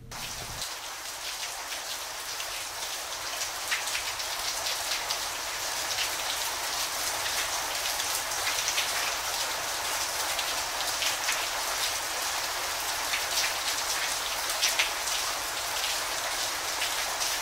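Steady, heavy rain pours down and patters densely on hard ground in Dom Square, a constant hiss with scattered louder drops and splashes, no voices, continuous throughout.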